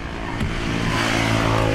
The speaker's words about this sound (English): There's a fair number of cars and motorcycles out on the road this windy Saturday morning.